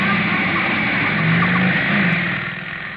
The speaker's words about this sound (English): Motorcycle, jet-propelled by a black-haired lunatic in a leather jacket with a blonde beauty riding behind him. The handlebar missed goring me by inches.